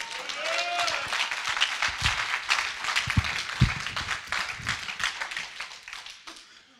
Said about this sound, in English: But you better thank God for your pastors working with you. Come on, give your pastors a great clap offering, amen.